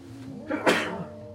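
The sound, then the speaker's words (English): A single sharp sneeze bursts out, a brief intake followed by a loud explosive burst that quickly fades into quiet room tone. “Bless you.”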